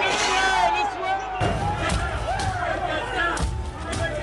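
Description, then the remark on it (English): Heavy, irregular thuds of pounding on the wooden doors of the U.S. House chamber on January 6, 2021, about four loud blows with a crowd shouting and murmuring behind them, tense. “There's pounding on the doors of the chamber, and at this point, they've put a large piece of furniture in front of the doors, and plainclothes officers had their guns drawn.”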